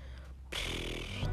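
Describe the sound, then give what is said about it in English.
A single raspy burp rumbles out for just under a second after a brief quiet pause, rough and breathy with a low, buzzing undertone. No one speaks. “There might be a moment of silence because I need to burp as well.”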